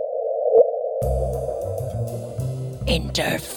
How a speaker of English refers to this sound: And that little bloop is actually a gravitational wave hitting the Earth